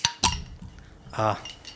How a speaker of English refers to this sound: All right. Well, let's grab our bottle openers because this is a bottle